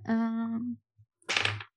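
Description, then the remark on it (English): A brief sustained, voice-like tone gives way, after a short pause, to a half-second burst of rattling clatter as a newly chosen, different die tumbles across a surface. “Okay, I'm going to put this dice away and use different dice. Let's go with this one.”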